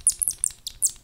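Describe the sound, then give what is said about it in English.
A happy rat makes a rapid series of high-pitched squeaks and chirps, about six short bursts in just over a second, clear with no voices. “This is the sound of a happy rat.”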